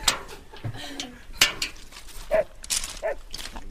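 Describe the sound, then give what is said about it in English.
Six farm dogs on a sheep farm give short, scattered barks and yelps, mixed with sharp clanks and clatter, with no steady rhythm. “I see, as well as the sheep, there's just a few dogs. Aye, 6 dogs here.”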